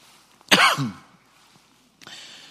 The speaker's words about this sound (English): I ask that you just forgive me as I cough through this through this message. It'll get better sometime.